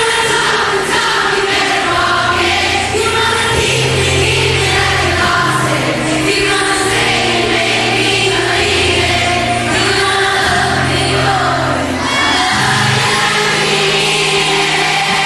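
A large concert crowd sings along over loud live music, a dense wall of many voices blending with steady bass notes and full band sound, continuous and even throughout.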